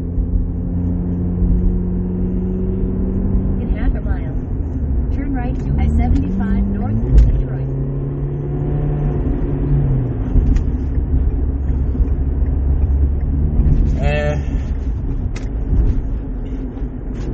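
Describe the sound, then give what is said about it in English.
A car cruising at highway speed on I-75 North in Detroit, heard from inside as a loud, steady road rumble and engine drone that never lets up, with faint, indistinct voices surfacing now and then. “I-75 North Detroit.”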